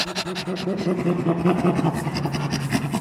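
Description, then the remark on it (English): A person imitates a chimpanzee's laugh with rapid, breathy panting on both the in-breath and out-breath, a rhythmic huffing with voiced tones running steadily for about three seconds. “Chimpanzees, their laugh is on the inhalation and the exhalation, and it's kind of a panting sound.”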